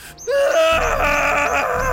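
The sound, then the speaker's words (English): A loud, sustained human scream bursts in after a brief quiet moment, holding strong for nearly two seconds: a military private's war cry shouted on a drill sergeant's command, with no other voices. “I want you to war cry at every plane you see until it leaves our airspace!”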